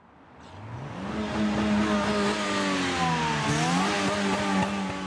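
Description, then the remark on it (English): A car engine revs hard at a car park where young drivers gather, its loud roar climbing in pitch, briefly dipping, then surging again over a steady wash of outdoor noise, with no one speaking. “Down at Bebop's car park, the young drivers say the crashes won't change the way they drive.”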